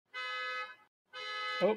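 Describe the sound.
A car alarm blares in two long, steady honks with a brief gap between them. The harsh buzzing tone is fairly loud, and a voice briefly cuts in as the second honk ends.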